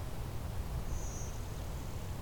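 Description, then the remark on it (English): In the evening, a faint, high, buzzy blue-winged warbler song rises briefly above a steady background hiss and low rumble, with a thinner second buzz trailing after it. “And it's easier to pick out these species like blue-winged warbler that don't stand out as super loud.”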